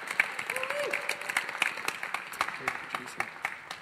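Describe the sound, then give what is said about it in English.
A crowd applauds steadily for a woman as she comes up to speak, the overlapping claps forming a dense, continuous patter with one brief vocal whoop near the start, all at a moderate level for about four seconds. “Let's give her some applause as she comes on up.”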